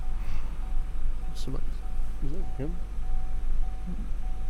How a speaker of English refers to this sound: So there's this, you know, V8 4.4 liter XC90 sitting behind us, just been idling for hours, and there's now some warning dinging on it. That's fun.